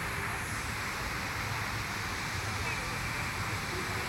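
A steady, continuous rush of water pouring unevenly over the top edge of a poorly maintained fountain, a dense hiss-like splash that holds evenly from start to finish.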